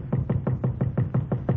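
A rapid, steady series of about eight knocks on a hotel room door at night, evenly spaced and fairly loud, with no voices.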